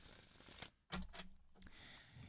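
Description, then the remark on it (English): A deck of tarot cards being shuffled, a few quick papery riffles and soft slaps in short bursts, fairly quiet, with no one speaking. “Okay, so I'm going to shuffle the cards”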